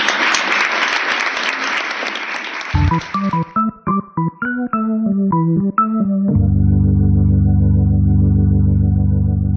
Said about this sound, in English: Once again, thank you very much and a round of applause for this.